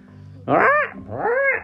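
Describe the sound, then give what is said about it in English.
A person imitates a parrot with two loud, squawky, high-pitched calls, each bending upward and then falling, the second slightly longer, after a brief low murmur. “When was the last time that you saw a parrot? I don't know if they make that kind of noise. A parrot would be like...”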